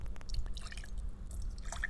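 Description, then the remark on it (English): Fizzy soda with lime from Regal pours into a glass, topping up a rum drink, with a steady low gurgle, crackling bubbles and small splashy drips scattered over the top, no voices during the pour. “And we are going to top it up with the soda with lime from Regal.”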